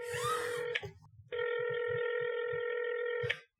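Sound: telephone ringing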